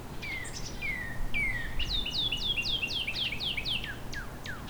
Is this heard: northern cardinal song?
yes